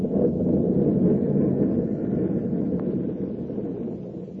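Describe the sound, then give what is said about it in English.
Storm wind roars steadily around a boat, a dense, low rushing noise that holds at the same loud level throughout with no voices. “A mad killer lurked in the shadows aboard a storm-tossed boat.”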